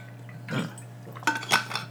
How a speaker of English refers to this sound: This is solo, so I'm going to take a sip of water. 1 second.